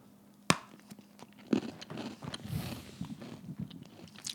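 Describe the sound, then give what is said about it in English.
A sharp crunchy bite into a gingerbread house, followed by a few seconds of uneven crunching and chewing with no one speaking. “But before you go, I'm going to take a bite out of this.”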